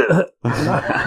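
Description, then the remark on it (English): Two harsh, raspy coughs after a bong hit, separated by a brief pause, the second one longer and more drawn out. “You don't cough every single time you hit it, so you don't hit it as much as you possibly can.”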